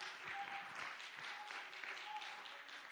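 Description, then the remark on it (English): An audience claps their hands in a dense, steady wash of applause that holds at an even loudness throughout, with faint voices and cheers mixed into the crowd noise. “Would you clap your hands and would you magnify the name of the Lord?”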